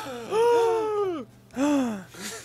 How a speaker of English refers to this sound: I gasp theatrically.